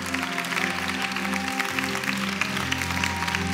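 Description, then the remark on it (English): An audience at a worship service claps hands steadily for about 30 seconds to worship the Lord, over sustained music, the dense, rhythmic claps blending into a continuous bright wash with no talking. “You're activating your spirit as you clap your hands.”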